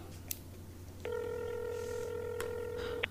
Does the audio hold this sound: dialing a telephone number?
yes